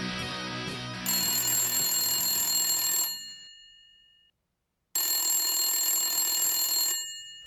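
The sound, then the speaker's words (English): A 90s-style telephone rings loudly, two trilling bursts of about three seconds each separated by a short silence, with no voices. “My 90s phone just rang”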